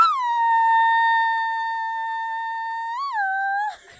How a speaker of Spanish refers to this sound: Aquí va mi grito.